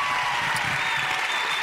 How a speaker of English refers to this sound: And I know we've clapped for him, but I just think we need to recognize that again. The Babe Ruth of youth conferences. Let's give him a big round of applause tonight.